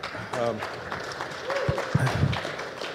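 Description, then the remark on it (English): A crowd at a panel event applauds the moderator and panelists with dense, steady clapping that fills the whole stretch, while a few voices speak and call out over the noise. “Everybody, round of applause for our moderator and our panelists.”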